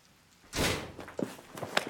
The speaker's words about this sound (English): With my new mission in mind and a whole new sense of purpose, I rush up the stairs and in through the front door, taking it off the latch as I go.